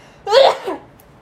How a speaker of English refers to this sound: I have to sneeze. Bless you.